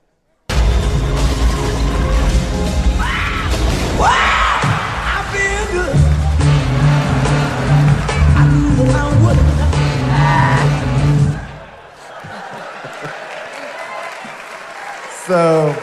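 In a film car crash involving a champagne truck, a sharp, high-pitched vocal scream taken from a famous funk song rises out of a loud, chaotic burst of crashing and rumbling noise, followed by a steady low drone before everything abruptly drops away.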